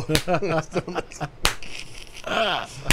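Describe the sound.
A few sharp, widely spaced hand claps ring out among lively talking voices, each a quick loud crack between stretches of speech.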